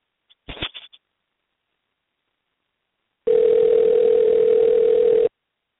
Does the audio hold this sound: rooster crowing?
no